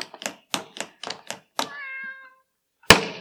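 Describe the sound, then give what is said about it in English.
A cat gives a quick series of short, chirpy mews, then one longer drawn-out meow, followed after a brief pause by a sharp, loud thump. “I want to know where the cat went.”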